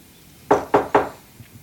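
Three firm knocks on a wooden door in quick, even succession, clear, followed by a faint shuffle amid otherwise quiet surroundings.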